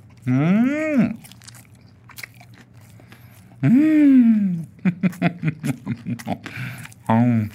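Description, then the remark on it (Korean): Crunchy chewing of a shrimp-shaped kimchi dumpling filled with kkakdugi (cubed radish kimchi): about ten quick, rhythmic crisp bites, framed by drawn-out appreciative humming vocalizations before and after. “확실히 아삭 깍두기가 씹힙니다.”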